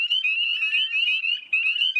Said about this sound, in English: And in wooded ponds, along with the wood frogs, you'd also hear lots of little spring peepers.